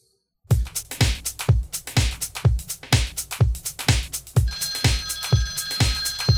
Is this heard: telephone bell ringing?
yes